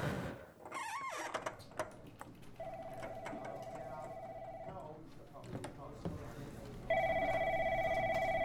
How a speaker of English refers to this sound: We step into the building. The offices look busy. Phones are ringing and there's lots of people talking.